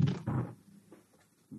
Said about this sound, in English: Oh, that dice fell. Doesn't count. You roll it.